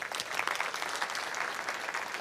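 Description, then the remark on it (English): An audience of men and women at a talk claps steadily for themselves, a dense wash of many hands applauding at moderate volume, continuous throughout with no voices standing out. “So a round of applause for yourself.”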